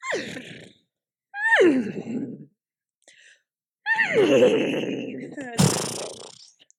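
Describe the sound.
A person imitates a winded, panting horse that has just been on a jog, put back in the stable and given a bath: three loud, breathy vocal bursts that slide downward in pitch, separated by short pauses, ending in a harsh snorting exhale.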